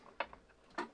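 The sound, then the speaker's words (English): Two short, sharp sneezes about half a second apart, fairly quiet, with no talking in between. “Bless you. Bless you.”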